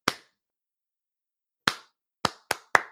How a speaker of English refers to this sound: Hey, I'm clapping because that will make me happy.